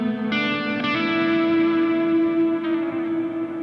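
An instrument rings out through a Memory Man copy echo effect and a couple of different reverbs, its sustained notes washing into a long, smeared tail, with a few fresh attacks layered over the drone. No one speaks.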